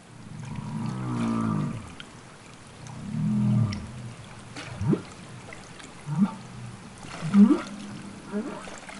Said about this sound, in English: humpback whale calls, are produced by male whales, female whales, old whales, baby whales. All of the humpback whales in the world will produce a suite of calls. And these calls are all of the sounds that whales make outside of the context of song.